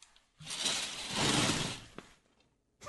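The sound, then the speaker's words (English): A shower curtain swishes along its rod in a long, rough sliding sweep that rises twice, followed by a brief click and a short rustle at the end. “I just found curtain open and close sound effect.”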